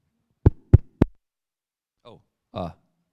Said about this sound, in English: I woke up to a knock, knock, knock on my front door. A literal, audible knock, knock, knock on my front door. It's an aluminium door. It has a distinct sound to it, and it was a knock,